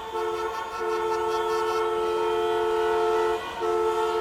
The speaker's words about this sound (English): Here in Ecuador, when there's traffic, people are frustrated, they start honking their horns and beeping and beeping, and there's lots of noise in the street.